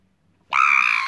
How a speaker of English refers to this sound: She proper screamed there.